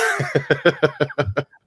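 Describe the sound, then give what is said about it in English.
A rapid run of about seven short, dry coughs in quick succession, fairly loud, each burst sharp and raspy, ending abruptly. “Was that a dry cough? That was dry cough.”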